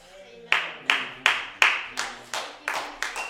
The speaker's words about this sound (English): Yeah, that's worth cheering for. Like, if we're going to cheer for it, let's really cheer for it.